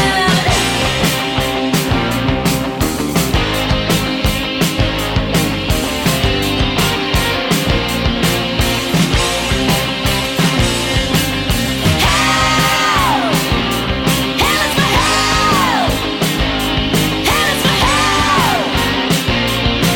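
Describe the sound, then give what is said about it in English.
Loud, dense rock music from the original version of a song, with driving drums and distorted guitars; the female singer speeds it up, her high vocal wailing into strained, scream-like cries over the band in the final stretch. “the original song, where she speeds it up and has a good old scream herself towards the end.”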